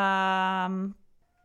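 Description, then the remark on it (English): A single drawn-out, steady-pitched meow from a kitten, loud, lasting under a second before cutting off into quiet. “Maybe your kitten wants to come and tell a story on the podcast.”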